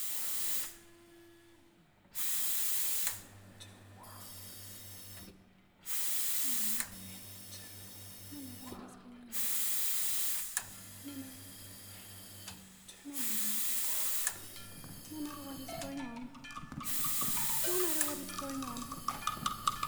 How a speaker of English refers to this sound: the espresso machine operates by itself